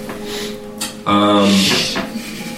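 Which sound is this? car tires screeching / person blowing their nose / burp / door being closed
door being closed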